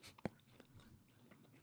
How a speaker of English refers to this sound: Maybe we can edit out the chewing. I do apologize. It's kind of funny, though. I'll try and lean back. Well, I'm doing it, too. Yeah, this is bison.